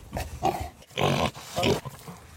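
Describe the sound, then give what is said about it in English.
A pig snort sound effect, the freedom snort of Grunt the Pig: a few loud bursts of snorts and grunts, with one big broad snort in the middle followed by another shorter snuffling snort. “We've got the big freedom snort.”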